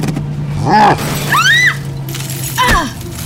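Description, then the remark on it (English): A fist pounds the windshield of a Chevy truck, with a sharp cracking smash near the end, while high, wavering squeals rise and fall over a steady low engine rumble. “Wyatt raises his arm high into the air, ready to bring his fist down on the windshield with one final blow.”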